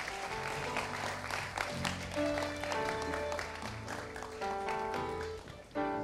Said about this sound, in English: Can you follow this gentleman? You write your names and you come and join us. Amen. Amen. Clap for them. Clap for them.